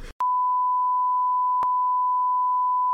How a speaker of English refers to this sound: Like, we're really gonna overblow the beeping out bit this episode. Oh, that's funny. We've done 2 minutes of beeping.